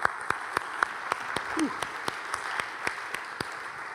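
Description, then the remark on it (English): An audience applauds steadily at moderate volume, a dense wash of clapping with some sharper, evenly spaced claps standing out, and a brief cheer or whoop rising midway. “Let's give all those folks a round of applause, please, folks.”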